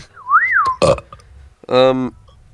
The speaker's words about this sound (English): That's very rude, …. Doing a big burp like that. In his kitchen.